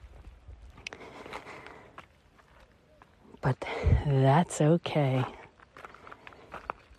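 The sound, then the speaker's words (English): Steady crunching footsteps on loose stones along a mountain trail in Red Rock Canyon under a warm desert sun, soft and rhythmic, with a man speaking briefly over them in the middle. “So you can hear, there is the crunch of the stones beneath my feet on this trail.”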